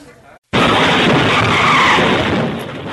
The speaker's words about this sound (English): Onboard cameras capture the moment a city bus in Detroit crashes through the wall of a building. What caused this terrifying accident?